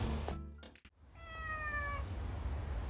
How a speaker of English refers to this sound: Just a stray cat.